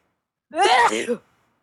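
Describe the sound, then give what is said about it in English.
A single loud, forceful sneeze, a voiced burst lasting under a second with a sharp onset and brief trailing end, then silence. “I muted it, and then when I sneezed, it unmuted.”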